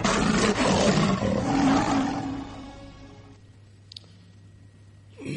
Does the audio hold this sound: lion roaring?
yes